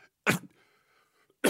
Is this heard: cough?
yes